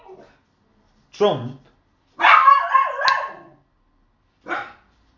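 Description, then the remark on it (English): A dog barks and yelps several times: a sharp bark, a longer whining, howl-like stretch, then another short bark after a pause. “Fucking dog.”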